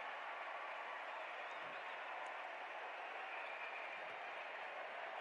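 A large arena crowd at a basketball game roars and cheers after a missed first free throw as Chicken Mania starts again, a steady, dense wall of noise that holds at full strength for several seconds, with no clear voices standing out.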